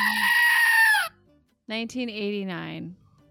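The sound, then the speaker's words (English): A loud, nasal goat bleat held for about a second, followed after a short pause by a second wavering, quavering bleat-like cry, both clear. “Since there was no goat, I'm just buying myself time.”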